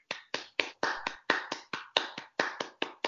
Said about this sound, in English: Hold on. Let's stop for 1 second just to give them the celebratory golf clap.